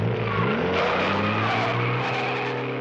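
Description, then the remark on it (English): A powerful car engine, Batman's super-fast Batmobile, roars steadily as the vehicle speeds off, with a sustained tire squeal mixed into the loud, continuous rumble. “Would you rather go for a ride in Batman's super-fast Batmobile?”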